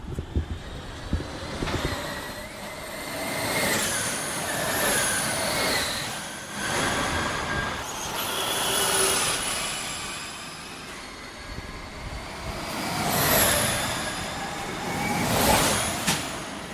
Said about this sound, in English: But first, with your permission, because you went to Formula E and you recorded some Formula E vehicles, I wanted to hear what Formula E electric cars sound like. So we've got a clip that you recorded. Here it is.